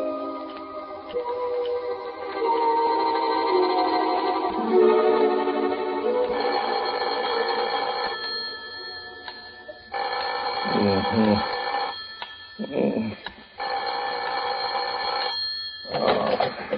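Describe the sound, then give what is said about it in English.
An old-fashioned telephone bell rings loudly at a warden's office, clattering in long sustained bursts separated by short gaps, with faint muffled sounds in the background. “You better phone the warden to make sure, though, Governor.”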